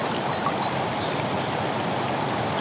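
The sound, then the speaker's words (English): Steady rushing water of a waterfall tumbles and splashes over rocks, a dense continuous roar filling the whole clip with fine bubbling detail as bubbles of air pop, and no voices. “You can now see the water bounce off the rocks and bubbles of air, large and small, popping.”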